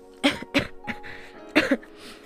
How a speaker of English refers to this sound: Oh gosh, I need to get rid of this cough.